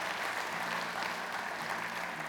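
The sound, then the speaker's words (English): Steady audience applause fills the whole stretch, a dense wash of clapping hands that stays loud and even throughout, with no voices standing out above it. “Amen. Y'all can clap it up.”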